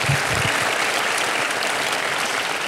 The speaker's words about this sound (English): Give him a big round of applause real quick.